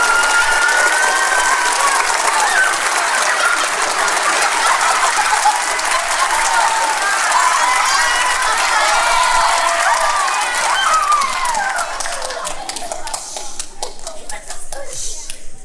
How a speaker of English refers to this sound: He was an understudy that just got his part tonight. So can we give him a huge round of applause?